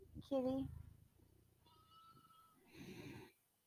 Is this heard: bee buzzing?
no